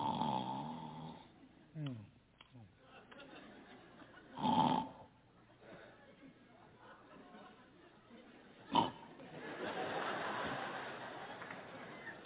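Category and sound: vocal imitation, voice imitating loud snoring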